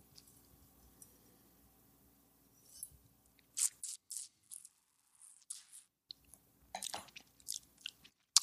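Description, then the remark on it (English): A quiet pause, then sipping and wet mouth smacking as someone tastes a red wine that is mostly Cabernet Sauvignon, a series of short slurps and clicks over a few seconds, with no talking. “But this is the vast majority of this is Cabernet Sauvignon, and I'm going to take a little sip.”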